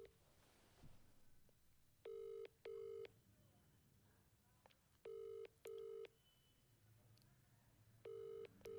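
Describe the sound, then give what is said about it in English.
A phone ringback tone plays in paired buzzy bursts, each double ring followed by a pause, repeating three times steadily over faint background hiss while the call waits to be answered. “Bell गई वो भी बहुत बड़ी बात है.”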